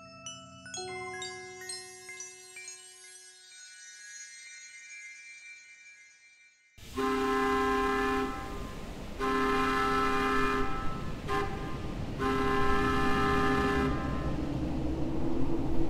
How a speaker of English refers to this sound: There is no rattle of wheels, no puffing and blowing of the locomotive. Only, from time to time, the engine whistle is heard in a fitful, murmuring, wailing gust of sound.